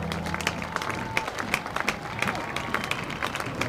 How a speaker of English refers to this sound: Vanderbilt fans up and clapping.